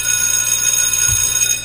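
A loud alarm clock rings continuously with a steady, shrill metallic tone, unbroken for the whole moment, with no voices present.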